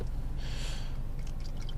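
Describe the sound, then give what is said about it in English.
Gin poured into a glass, about a shot's worth: a brief, bright splashing hiss lasting about half a second, then quiet with faint clinks and drips, no voices. “So am I pouring basically the equivalent of a shot here?”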